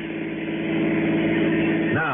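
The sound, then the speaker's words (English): A car engine hums steadily, its pitch climbing near the end as the car, with luggage loaded in the back, pulls away and accelerates in Los Angeles. “I piled my luggage into the back of his car and we took off.”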